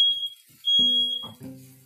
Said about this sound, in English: Sorry. Yeah, sorry about that. It's a fire alarm. We have a very sensitive fire alarm. Yeah, every time we are cooking, it goes off.